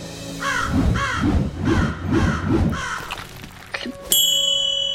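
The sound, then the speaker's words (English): A raven caws about five times in a steady rhythm, harsh, then a bright metallic ding rings out and lingers at the end. “The sacred raven of Olympus has retrieved the amulet for safekeeping!”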